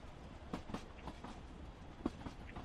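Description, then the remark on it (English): A ghost train ride car rattles along its track, with a steady rumble and irregular clacks and knocks as the wheels pass over joints. No one speaks. “I'm live on a ghost train right now.”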